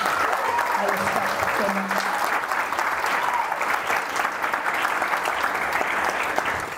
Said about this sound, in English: So one more time, please clap it up for somebody.